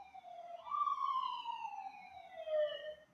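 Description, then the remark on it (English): An ambulance siren wails right down the street, its tone sweeping up sharply and then sliding slowly downward as it carries down the street, steady and fairly loud with no talking over it. “You hear that ambulance in the background?”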